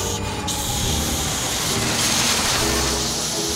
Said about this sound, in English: No, Guy Raz, I'm shushing that jet plane that just flew up above our heads. You just hear its pollution just wafting through the atmosphere?